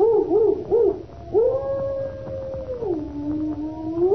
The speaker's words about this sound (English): Listen to that dog. He's in an ugly temper.